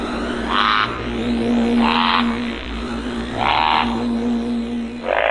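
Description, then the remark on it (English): A duck quacks four times at a steady pace, each quack a short nasal burst, over a constant noisy background with a low hum. “Sorry, we said duck and we need some more sounds in this night.”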